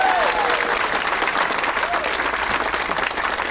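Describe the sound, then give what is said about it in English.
An audience bursts into sustained applause for the staff at the Punchline, a dense, steady wash of clapping hands that holds at an even loudness for several seconds, with a few faint whoops mixed in. “Let's hear it for all the staff here at the Punchline.”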